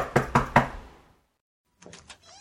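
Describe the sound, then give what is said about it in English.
Three firm, evenly spaced knocks on a door ring out, followed by a pause and then a softer cluster of quick taps or rattling. “Let me get the goddamn door.”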